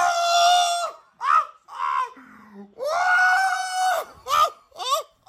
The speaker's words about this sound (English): I'm going to play audio of a scream right now. Now let me tell you, that is a scream of joy.